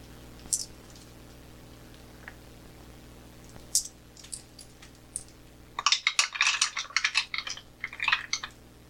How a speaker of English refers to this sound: So we're going to roll some dice.